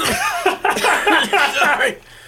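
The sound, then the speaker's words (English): A man puts on a deliberate, theatrical fake cough: a few loud, voiced hacking bursts run together over about two seconds. “He fakes a cough.”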